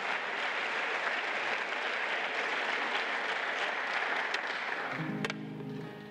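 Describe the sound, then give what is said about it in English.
Sustained applause from a crowd, a dense steady clatter of many hands clapping that carries on for several seconds before easing slightly as a low musical tone enters near the end. “You know, you stand up and you clap for this, but this is no kind of miracle that he can't do in your own life.”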